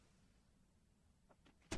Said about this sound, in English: You can hear it close, can't you? A bit, nice big clunk on the door.